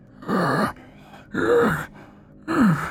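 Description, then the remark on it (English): A voice imitates shallow, labored breathing: three strained, slightly groaning breaths in an even rhythm, fairly loud, with short quiet gaps between them. “You begin to hear, like, very shallow but labored breathing.”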